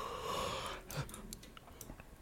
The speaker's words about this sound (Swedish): Fan, hostar jag inte eller rapar jag inte, så jäspar jag istället.